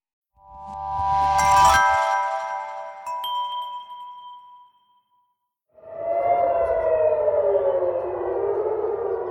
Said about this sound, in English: Air raid sirens in Tel Aviv and residents of Israel's second largest city scurry for cover.